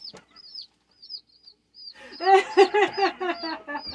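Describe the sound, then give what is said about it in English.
A rooster crows loudly into a microphone, a run of harsh, choppy calls filling the second half, after a few thin, high chirps in an otherwise quiet opening. “I'm gonna do that maybe like every day, like put the microphone in front of the chicken's face and like film him crowing into it.”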